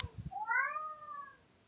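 A single drawn-out, strained meow from Ross, a roommate's cat in an apartment, rises and wavers for about a second, fairly loud, preceded by a few soft low thumps and no talking. The cat is often stressed.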